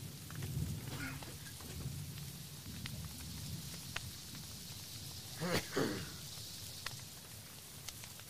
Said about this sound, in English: Damn storm. Never lets up.